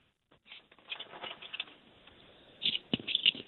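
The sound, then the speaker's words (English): Many book pages being turned at once, a soft, continuous papery rustling with overlapping flutters and a few sharper, louder flicks toward the end. No one speaks. “There are a lot of pages turning, which is a good sign.”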